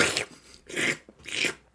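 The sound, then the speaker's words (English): Three wet, hissy mouth slurps in a steady rhythm, moderately loud, with brief pauses between them and no talking. “The sounds of slurping.”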